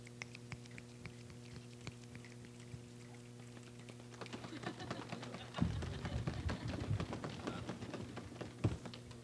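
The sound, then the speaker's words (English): A crowd patters their hands to mimic rain, starting as scattered taps and swelling into a dense, louder shower of pats midway, over a steady low hum with no talking. “I hear the sound of the abundance of rain.”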